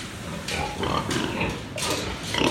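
About 150 pigs grunt and snort at a small commercial pig farm on the beach on the coast of Fujian, China, several animals at once, with overlapping rough bursts and a constant hum of activity; no one speaks.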